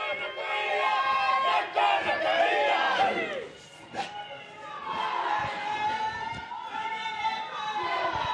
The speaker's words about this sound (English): As the pōhiri begins, the haka Wairarapa Moana is performed by some of the local school kids.